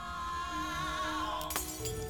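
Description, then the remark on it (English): A steady, ringing high-pitched tone holds, then sound waves at the glass's resonant frequency shatter it: a sudden sharp crash of glass shattering near the end, with bright tinkling fragments trailing off. Clear, no talking. “Sound waves can shatter glass.”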